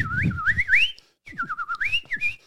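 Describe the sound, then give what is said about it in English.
A person whistles a warbling imitation of birdsong, part of a comedy bit about every bird in the bird kingdom, in two phrases separated by a short pause, the pitch trilling up and down in quick, fluttering runs. “Oh, every bird in the bird kingdom, it's like a beautiful song.”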